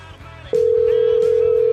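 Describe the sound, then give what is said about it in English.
A steady telephone dial tone for a phone call starts abruptly about halfway through and holds loud and unbroken to the end, over a low murmur of background sound. “But I think we should try and give him a call one more time here.”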